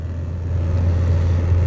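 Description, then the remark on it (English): Steady low rumble inside a car driving home after a workday, with a constant engine drone and road noise in the cabin, no radio playing and no voices. “So I'm headed back home from old L Dog.”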